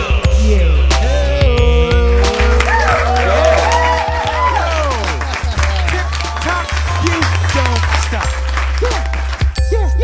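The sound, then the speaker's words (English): A virtual digital audience for the Adult Baby Show, live from T-Briz Studios, cheers and claps steadily for about ten seconds, with several rising and falling whooping 'woo' calls from somebody in the crowd in the first few seconds over a constant low hum. “Virtual audience, did you notice that sound in the digital audience where somebody in the crowd goes, woo!”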